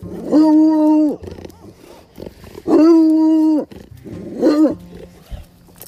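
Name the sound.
neighbor's dog barking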